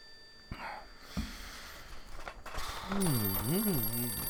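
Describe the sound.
A telephone ring tone starts in the last second or so, a steady electronic tone heard over the line of an outgoing call to New China, dialed from the number on its menu, while someone speaks over it, after a few soft clicks and handling noises.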